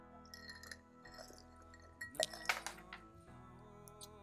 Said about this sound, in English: And I'm sucking on ice. Cheers.